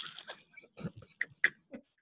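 A small dog snorts and snuffles close by, a run of short, wheezy grunts and sniffs with brief pauses between them, no voices present.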